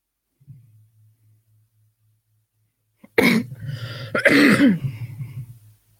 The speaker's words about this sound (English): Oh, you heard me cough? Yeah, I heard you cough